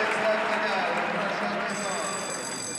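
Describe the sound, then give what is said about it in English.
A show jumping start bell rings partway through for rider Ben Mayer's round, a steady, sustained high-pitched tone sounding over a constant murmur of crowd noise and indistinct voices. “Bell goes then for Ben Mayer.”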